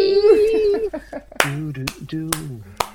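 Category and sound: crowd, people clapping hands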